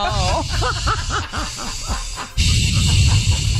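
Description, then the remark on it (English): A voice imitates the heavy, wheezy breathing of someone going up steps: a rough hiss with thin, wavering whistle-like tones, ending in a louder, harsher exhale that holds steady for the last second. “Why are you breathing like that? That's me when I go up the steps.”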